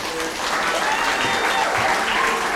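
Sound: audience applause and cheering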